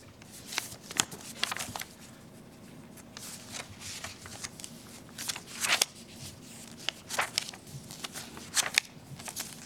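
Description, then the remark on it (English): Pages of a paper copy document rustle and flip as someone looks through it, in a string of irregular crisp swishes and crinkles, some louder than others, with no one speaking and a faint steady hum underneath. “This is my first time to look at the paper copy.”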